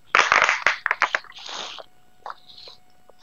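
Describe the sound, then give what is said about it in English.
A cheap, thin plastic water bottle crinkles and crunches loudly as someone drinks water from it, a quick burst of crackling pops followed by a softer rustle and a few lighter clicks, with no talking. “That was just me drinking water out of a very cheap glass bottle, or sorry, plastic bottle.”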